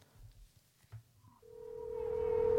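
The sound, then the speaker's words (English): A telephone ring tone in a film scene: after a brief stretch of low rumble, a steady electronic tone sounds and holds, swelling louder through the end, with no talking. “And if you listen to that phone call, that's the fork in the road of how you're going to take the rest of the movie.”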